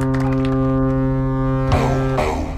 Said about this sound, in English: Full house. They brought the foghorn.